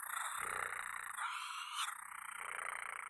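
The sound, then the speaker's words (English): A person imitates the prowling growl a tiger makes before it goes, with a raspy, rattling vocal rumble held for about three seconds, with a brief smoother break in the middle before the gritty croak resumes. “That's my tiger noise. That's the prowl before they go.”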